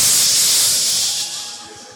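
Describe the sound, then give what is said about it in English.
A pressure cooker cooking soup with dumplings hisses out steam in a loud, steady, high-pitched rush that fades slightly toward the end. No one speaks. “You must hear the pressure point.”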